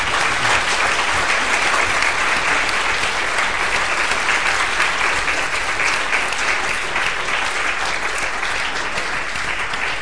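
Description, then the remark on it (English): Sustained applause from an audience for Pavel Litvinov and Michael Scammell, a dense, steady wash of many hands clapping at a loud, even level for the full ten seconds with no voices standing out. “Please give them a very big round of applause.”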